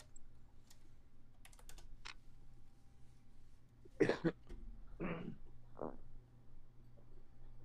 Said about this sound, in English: Pressing keys.